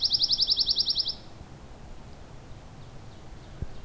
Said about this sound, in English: I think I heard redbreast nuthatch too. It's a bit quiet right now, but it's a fairly short, warbly song. Usually fades in and out a bit more